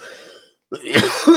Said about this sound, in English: Oh, why was I just coughing like an old guy? Like I was about to yell at somebody to get off my lawn.